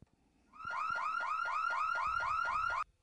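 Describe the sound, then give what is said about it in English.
A loud electronic house fire alarm siren whoops in rapid, repeating rising sweeps for about two seconds, steady, with no voices, then cuts off abruptly. “You want like the house is on fire alarm or like the...”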